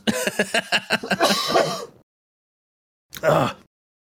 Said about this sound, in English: Try not to cough my lungs out.